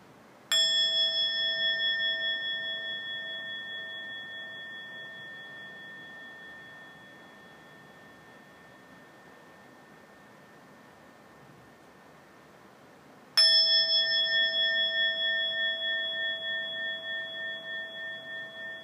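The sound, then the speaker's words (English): A bell is struck twice, about thirteen seconds apart, during a guided eyes-closed listening exercise; each ring a clear bright tone that lingers and slowly fades, heard alone against quiet background hiss. “So I'm going to ring the bell a couple times.”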